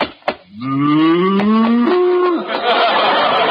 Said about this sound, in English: Oh, no. Wait a minute, mister. This is a cow.